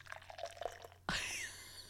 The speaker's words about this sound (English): Wait, I'll pour the can like right now. Oh, yeah, do it.